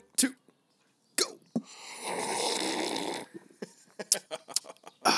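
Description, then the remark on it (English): Someone slurps coffee: a long, airy, hissing slurp of about a second and a half, framed by short wet clicks and smacking sips before and after. “You hear that slurping sound? We're having some great coffee.”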